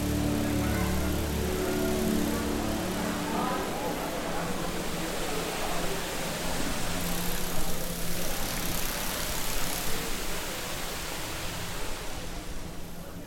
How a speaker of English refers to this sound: In this part of the world, where rain is scarce, the water feature, the longest in the world, welcomes you in a moment of zen. It's a wall of water. Have a listen.